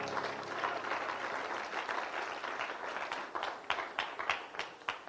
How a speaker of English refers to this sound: Won't you clap your hands into the Lord as you're being seated?